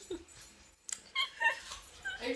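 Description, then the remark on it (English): A dog whimpers in a string of short, high-pitched whines, fairly quiet, with no talking over it. “Even the dogs ran out of the room at that joke.”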